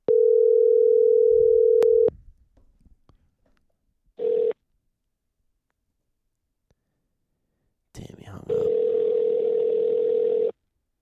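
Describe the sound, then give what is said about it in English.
An outgoing phone call's ringing tone as a man is called to get his input on games: a steady electronic hum that sounds for about two seconds, then pauses, returns as a short blip, and rings again more buzzily. No one speaks. “We're calling this mug.”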